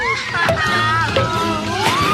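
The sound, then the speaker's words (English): Water splashes and sloshes in a few short bursts as Roo, the young kangaroo, plays in the water with Rabbit in the Hundred Acre Wood, mixed with voices and a musical tone that carry through the whole moment. “And with Rabbit, Roo appeared to be making quite a...”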